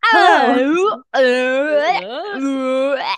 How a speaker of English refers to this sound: I'm gonna yawn. Sorry. She's yawning.